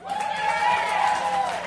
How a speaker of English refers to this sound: Thanks for being at the Gladstone with us. And how about another cheer for the … and …?